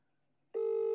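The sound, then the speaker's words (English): A single steady electronic phone tone sounds through a speakerphone, lasting under half a second after a moment of quiet, clear and fairly loud, with no voices. “And then there should just be that phone thing. Here we go. I've got to get him on speaker.”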